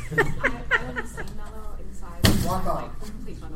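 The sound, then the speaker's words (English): A chair topples over with a single sharp, loud clatter partway through, surrounded by people talking and some light chuckling. “Want me to, like, knock over a chair or something?”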